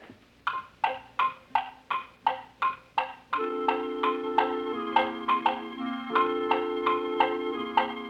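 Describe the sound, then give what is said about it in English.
A steady clock-like tick-tock, crisp and evenly spaced, first on its own and then continuing over sustained musical chords that swell in underneath. “Now here's a clock that works all right. It works all right, but not exactly quite. Instead of going tick-tock-tick, the crazy clock goes tock-tick-tock.”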